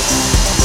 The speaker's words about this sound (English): Round and round goes the drill.